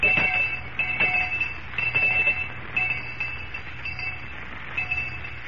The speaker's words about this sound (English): All right, Miss Perkins, I'll ring the lunch bell.